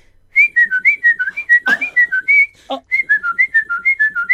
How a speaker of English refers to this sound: But it was. I hate whistling. And I do too. I hate whistling. And apparently that instrumental is 700 bars long because it was.